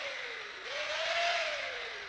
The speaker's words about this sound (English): The nurse will test the drill with a few quick dry fires.